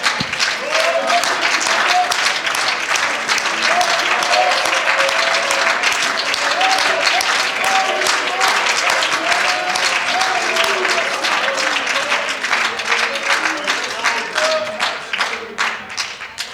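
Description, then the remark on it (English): An audience at an evening church service gives a hand clap of praise to God, applauding steadily for about sixteen seconds, a dense, loud wash of many hands clapping, with faint voices and cheers rising through it before it tapers slightly at the end. “Can we give him a hand clap of praise in this place?”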